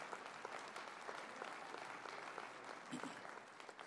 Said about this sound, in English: Go on, that deserves a clap. Yeah, go ahead.